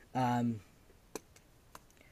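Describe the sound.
A brief voiced sound, then a few sharp, light clicks and taps spaced apart as a pencil is dropped and handled, otherwise quiet.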